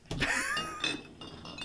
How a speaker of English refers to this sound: We got glass flying everywhere here.